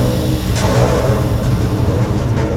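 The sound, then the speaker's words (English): Engines of approaching Cosmic Coalition spaceships roar in a steady, loud, deep rumble with a broad hissing wash layered over it, holding constant throughout with no voices. “Can you hear that? More ships are coming after us!”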